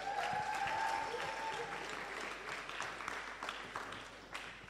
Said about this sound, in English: I swear that's like my small group putting pressure on every one of you guys to clap.